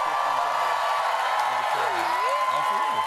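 A late-night talk show studio audience applauds and cheers loudly and continuously for a guest's entrance, dense clapping with scattered shouts and whoops rising above it.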